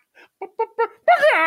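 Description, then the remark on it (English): A voice in a movie, dubbed for the character Mercy, imitates a chicken: four short, clipped clucks in quick succession, then a drawn-out, loud squawking call, clear with no other talk. “It was such a good chicken sound.”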